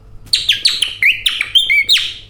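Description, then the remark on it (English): A lively string of high, quick chirps and downward-swooping tweets, about eight in two seconds, made by an old man behind the desk at Davenport's Magic Shop in London, opposite the British Museum, imitating a small bird's song, with no talking. “There was the old man behind the desk doing this.”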